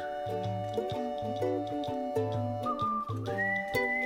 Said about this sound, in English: I didn't know the whistle was coming. That's what I'm laughing at.